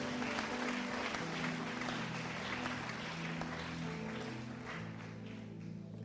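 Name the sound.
audience clapping hands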